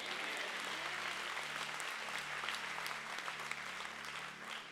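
An audience claps hands steadily in response to a call to clap and say amen, the dense applause holding at a constant level throughout, with a low sustained musical tone underneath.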